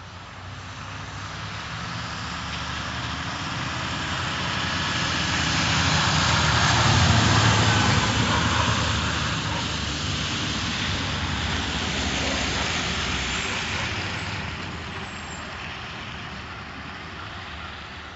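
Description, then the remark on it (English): A snow plow and salt truck rumble past on a winter road in Massachusetts: a heavy engine drone with broad hissing noise that swells, fades slightly, then surges again before trailing off. “The sound of a plow and salt truck is a familiar one in Massachusetts in the winter, as well as throughout New England and all parts of the country where snow falls and the roads ice over.”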